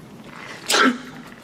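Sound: sneeze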